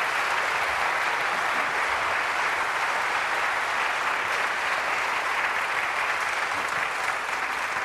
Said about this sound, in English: And now we can have questions, right? After that, everyone applauds for you. Okay. Thank you.